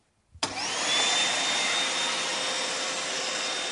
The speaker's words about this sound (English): OK, well, I guess the next thing to do is turn the Hoover on.